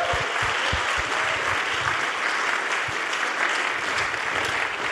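Sustained applause from a church audience fills the whole clip, a dense, steady wash of many hands clapping at an even loudness with no voices standing out.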